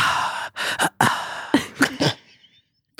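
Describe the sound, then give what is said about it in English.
A series of sharp, breathy inhales and exhales pulses in a choppy rhythm, fairly loud, a voice making a beat out of breaths before trailing off into quiet. “But you're breathing in a box shape. I was trying to make a beat.”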